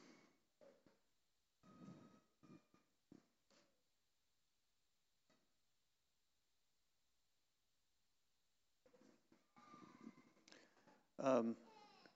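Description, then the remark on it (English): A young child, just stung by a little scorpion, cries and whimpers in short, broken bursts, falling quiet for several seconds before wailing again, ending in a louder, high-pitched cry. “So that everyone is aware why there's a child crying, it would appear, according to the report I heard, that some young one was stung by a little scorpion.”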